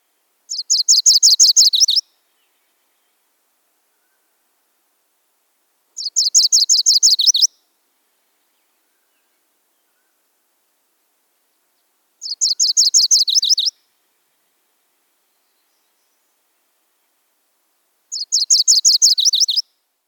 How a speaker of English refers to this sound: The song is fast and burry in tone. It consists of rising individual notes. Their typical song has two distinct parts, a fast burry warble, followed by a similar series on a different pitch.